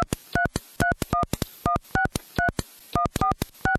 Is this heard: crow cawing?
no